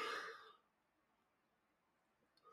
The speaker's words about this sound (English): Ooh, why am I yawning?